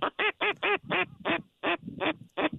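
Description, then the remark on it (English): Two gadwall ducks coming in during a duck hunt; a duck quacks repeatedly in a quick, uneven series of about nine harsh, nasal calls, loud, with no voices in between. “Nope, no, it's two gadwalls coming.”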